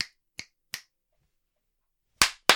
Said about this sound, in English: Two claps at the end. I did two claps. You did three.